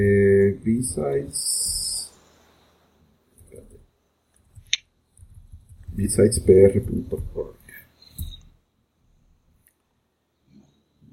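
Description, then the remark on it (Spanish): Scattered, fairly quiet keystrokes on a computer keyboard tap out in short irregular bursts, set between stretches of people talking. “Y si aprendo a escribir en el teclado.”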